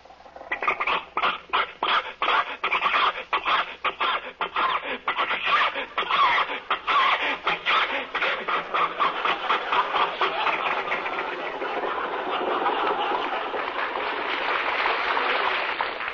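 Jack's old car engine sputters and coughs in rapid, uneven pops as it is driven up a hill with more gas given, then settles into a steadier, rough wheezing drone. It is loud and continuous, with no talking over it.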